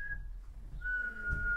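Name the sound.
person whistling through lips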